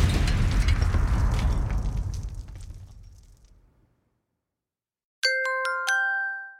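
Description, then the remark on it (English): A loud, rumbling explosion roars and slowly dies away over a few seconds; after a short silence, a bright multi-note electronic chime rings out. “Well, that could cause an explosion.”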